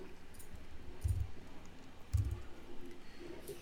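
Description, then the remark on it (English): Two dull knocks on computer keyboard keys, about a second apart, with a few faint clicks around them. The sounds are quiet, and no one speaks. “You've hit the Sorry, keyboard.”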